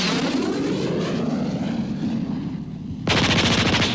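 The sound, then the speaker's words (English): A droning aircraft engine roars steadily as the plane is flipped upside down, then a rapid machine gun burst erupts in a dense stream of sharp, loud shots over the engine noise, with no talking. “I flipped that bird upside down and let loose a burst that felt so sweet.”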